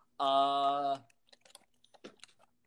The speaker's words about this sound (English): Pay no attention to the clickety-clack of obvious computer keys.